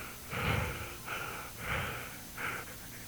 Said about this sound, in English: A wild-eyed maid stood there, breathing.